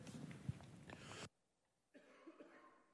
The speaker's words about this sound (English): I'm trying to spare y'all my coughing.